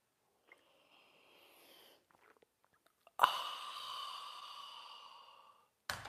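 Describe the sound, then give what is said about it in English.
A soft, quiet sip of coffee from a mug, followed by a loud, drawn-out satisfied exhale that fades over a couple of seconds, ending with a brief knock. “It's called the Simultaneous Sip. And it's going to happen now. Go!”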